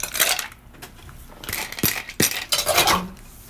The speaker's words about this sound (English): So let's put some ice in our shakers. Let's do it.